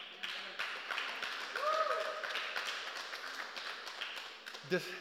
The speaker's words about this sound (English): You guys can clap for God. Don't clap for me. Clap for the Bible's honesty. You guys can, yes.